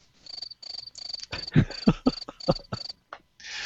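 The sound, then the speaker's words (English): Crickets chirp in a steady run of high, pulsing trills, with a burst of lower, rough rumbling sounds mixed in partway through before a hiss at the end. “I think you should play the crickets.”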